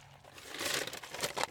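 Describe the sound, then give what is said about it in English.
A snack bag crinkles open with a burst of crisp, crackling plastic rustles, irregular and fairly loud, with sharper crunchy peaks toward the end and no talking. “I eat this whole goddamn bag in the car.”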